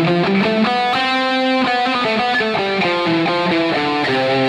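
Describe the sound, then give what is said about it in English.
A distorted electric guitar plays a quick run of single notes stepping through the C major scale (C, D, E, F, G, A, B, C), ringing out over a sustained static chord, steady in volume with no voices. “So what we're dealing with here are the notes C, D, E, F, G, A, B, and C.”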